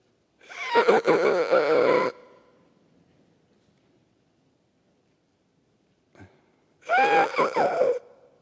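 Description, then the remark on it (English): A voice imitates the breathing of a woman in cardiac arrest, lying on her back after being pulled from a pool: two long, strained gasping breaths, each ragged and wheezy, separated by a few seconds of near silence with a faint click between them. “By then, they had pulled her out of the pool, and she was laying on her back. And she was breathing something like this.”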